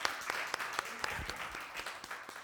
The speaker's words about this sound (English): All right, give God a hand clap.